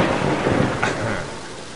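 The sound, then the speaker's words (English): Steady rain hisses throughout while a low, rolling rumble of thunder fills the background, swelling slightly midway before settling back into the wash of rainfall. “Maybe the garden's not such a bad idea. It's not raining that hard.”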